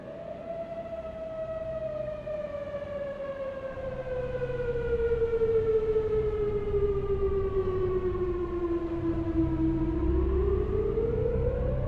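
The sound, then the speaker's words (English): A Cold War-era civil defense air raid siren, used for drills and for warnings of nuclear attack, earthquake or other disaster, wails in a long, steady tone that slowly sinks in pitch, then begins climbing again near the end. It is loud and continuous, with a low rumble underneath and no voices. “So as kids, I guess we were a little bit numb, but we really never knew if it was a drill or a real emergency.”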